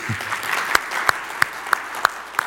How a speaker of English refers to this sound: All right, that was about a 50-50 clap, better than I thought, so...